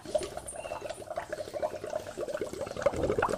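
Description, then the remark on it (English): Continuous bubbling gurgle of a person blowing air into a bottle of water, a steady rapid burble of small popping bubbles, moderately loud, with no talking. “Can you guys hear that? I'm blowing into the water.”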